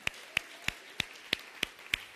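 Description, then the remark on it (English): An audience gives a hand clap at the close of a morning church service prayer, hands clapping in a steady, even rhythm, about eight sharp claps roughly a third of a second apart, fairly quiet, with no talking over them. “Come on, one more time. We'll give them a hand clap.”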